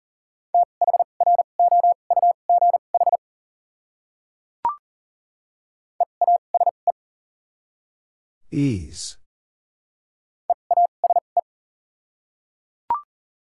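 Fast Morse code at 40 words per minute sending common English words with double character spacing: clipped, mid-pitched beeps in three bursts of rapid dots and dashes separated by silence, with a few sharp clicks and one brief noisy crackle.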